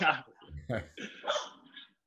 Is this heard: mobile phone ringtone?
no